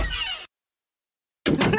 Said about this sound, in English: find the door closing and opening sound, please.